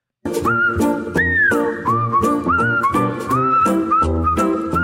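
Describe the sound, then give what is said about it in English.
A bright, melodic whistled jingle tune carries over a full musical backing with steady rhythmic hits, loud, sliding between sustained high notes for a few seconds with no talking. “Those wonderful whistles mean it is time for a WTF Wednesday.”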